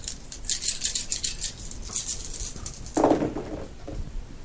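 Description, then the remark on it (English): Five small dice are rolled in a game, rattling and clattering in quick, irregular patters, a burst of light clicks followed by a fuller tumble as they settle, with no sixes and no talking over it. “So I've got a mind of 3 and investigate of 2, so that's 5 dice.”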